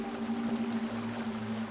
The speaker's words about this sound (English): There's the water.